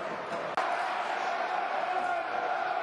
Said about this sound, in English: But, as you can hear, the crowd are becoming impatient.